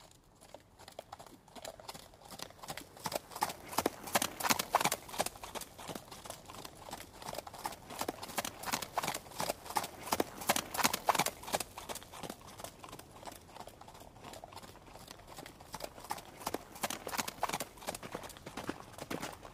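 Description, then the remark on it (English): Hooves of several horses walking past clop steadily along a dirt road, a dense, uneven rhythm of crisp footfalls continuing throughout, swelling slightly louder at moments as they pass. “Father, what am I supposed to do out here when all of the horses are just walking past us on the dirt road?”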